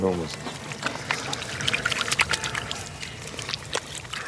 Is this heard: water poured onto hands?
yes